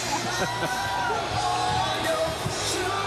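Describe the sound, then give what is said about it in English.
A large crowd cheers and yells excitedly, with whoops and shouts rising over a steady, dense roar of many voices that stays loud throughout. “The crowd's so excited.”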